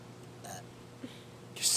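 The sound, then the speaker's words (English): A short burp sounds, with a faint click after it and a louder breathy burst right at the end. “Good burp.”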